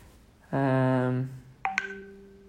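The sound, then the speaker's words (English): A loud, steady electronic phone notification tone sounds for about a second, followed by a short pair of quicker chiming beeps that ring out briefly, with no talking over it. “Oh, did you guys hear that? That's a notification.”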